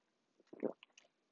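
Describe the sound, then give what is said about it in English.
A quiet sip of lemonade: a brief cluster of soft wet slurping and swallowing mouth noises lasting about a second, with no talking. “And I'm sipping on my lemonade.”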